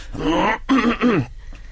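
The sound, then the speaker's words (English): A voiced throat clearing, a drawn-out 'ahem' in two or three quick pushes lasting just over a second, then quiet. “Going to clear your throat.”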